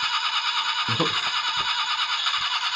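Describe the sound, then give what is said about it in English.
A car engine cranks and tries to start as Johnny starts his car, with a loud, steady high-pitched whine and squeal running throughout and a few low sputtering thumps underneath. “Get that car started.”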